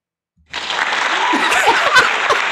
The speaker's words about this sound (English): You know when like the sitcom or the comedian stops talking until they wait for the applause?